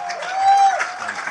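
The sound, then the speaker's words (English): An audience claps for a guest at the end of a talk in a steady, dense round of applause, filling the room with a continuous wash of hand claps, with a thin whistle-like tone briefly rising above it. “And look, we're going to, listen, firstly, massive round of applause, please.”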